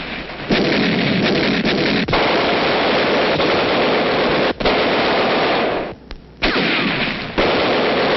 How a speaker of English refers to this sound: Communist artillery hammers the ambushed battalion.